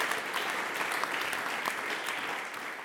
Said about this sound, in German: Er hat sehr, sehr, sehr viel geleistet für die Landsgemeinde. Bitte auch für ihn noch einen Applaus.